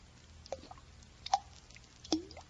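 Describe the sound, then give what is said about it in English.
Three separate drops of water plink one after another at a slow, steady pace, each a short, bright, slightly pitched drip against a quiet, faintly humming background. “Now what? Something's dripping.”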